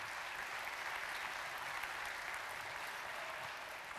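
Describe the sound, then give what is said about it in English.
An audience applauds the return of a family it had sent to Turkey, with steady, sustained clapping that fills the whole stretch, a dense crackle of many hands at an even level with no voices breaking through. “Can we applaud that and say excited?”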